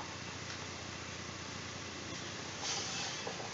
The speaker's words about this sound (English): As you sit here, quiet in the room, you hear that the rattling or the crackling of the torches around the room.